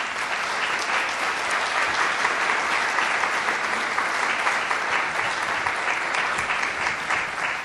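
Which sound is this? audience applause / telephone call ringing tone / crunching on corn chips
audience applause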